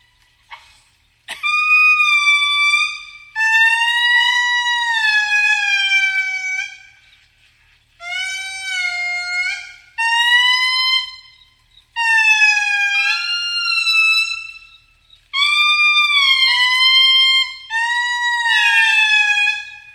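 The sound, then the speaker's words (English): Loud, eerie wailing calls of an indri lemur, long harmonic-rich notes that swoop up and down in pitch, delivered in several sustained phrases with brief gaps, siren-like and with no talking. “But here is the magnificent Indri wailing.”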